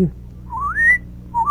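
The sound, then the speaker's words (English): A small bird's song: a clear, high whistled note slides smoothly upward and holds, then a second rising phrase begins after a short pause, over a low steady hum. “Go on, little bird. I want to hear the rest of that song.”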